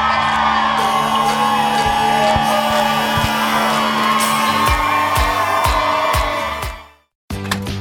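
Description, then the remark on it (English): A large outdoor crowd whoops, yells and cheers in a loud, continuous roar that cuts out abruptly near the end, followed by a brief burst of renewed noise. “Show that crowd. More people.”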